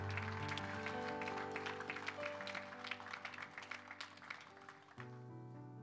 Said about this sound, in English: Let's give him a hand clap of praise in this house today.